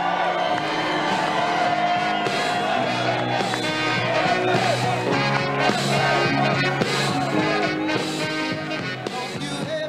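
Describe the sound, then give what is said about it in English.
A large, raucous, patriotic crowd cheers and shouts loudly and continuously at a Donald Trump rally in Minden, Nevada, a dense roar of voices that stays at full intensity throughout, with a steady tonal backdrop that sounds like music blended into the noise. “Big, raucous, patriotic crowds.”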